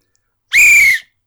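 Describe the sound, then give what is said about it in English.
A single loud, steady whistle lasting about half a second, sharp, blown by a person as a contestant's buzzer noise in a quiz round, with silence before and after. “Whistle, got it.”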